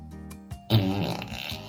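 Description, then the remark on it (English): A single drawn-out, buzzy fart sound effect plays loudly from an Alexa smart speaker after a few faint clicks, with no voices around it. “Alexa, do a fart.”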